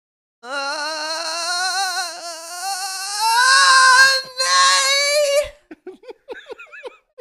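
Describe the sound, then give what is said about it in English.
A person's voice attempts a horse whinny, a long, shaky, warbling cry that climbs in pitch for about five seconds, followed by a few short breathy laughs. “Well, I'm going to give you an E for effort, but an F for the horse, because that ain't a horse, honey.”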